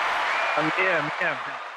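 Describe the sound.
A steady wash of audience applause, dense overlapping clapping that holds for about two seconds while a voice talks over it.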